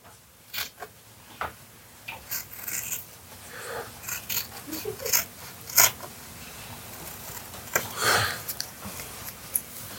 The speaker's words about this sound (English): Thank you. And that is how I tape a hockey stick.